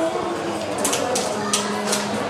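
Small, crisp crunches from someone taking tiny nibbles of a little mini meatloaf sandwich with crunchy bread: four or five quick, sharp bites at an uneven pace over a steady low background hum.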